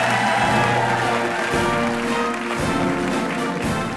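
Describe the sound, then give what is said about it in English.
The audience of the show Ask Me Another applauds steadily for Anna Chlumsky for about four seconds, a dense, loud wash of clapping with some cheering, while sustained musical tones sound underneath. “Clap it a hand for Anna Chlumsky.”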